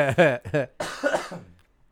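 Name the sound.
cough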